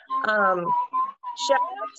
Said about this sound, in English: The hell was that? What was that whistle? My husband is whistling in the background.